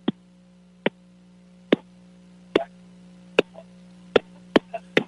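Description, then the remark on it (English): A caller taps out a song's rhythm on a phone for a call-in game to win tickets: about ten sharp, clicky knocks in an uneven, musical pattern over a steady low electrical hum, with no talking. “All right, this is Tap It for Tickets, where guys call in and tap it on the phone for tickets.”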